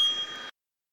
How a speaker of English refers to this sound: I forgot to get my bell lined up. So this is an unexpected delay. Here it is now.